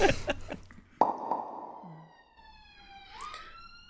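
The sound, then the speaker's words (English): An emergency vehicle siren wails outside, a steady tone that swings upward near the end, following a few sharp knocks and a thud at the start. Nobody speaks. “Sorry, I'm just waiting for the ambulance or whatever it is.”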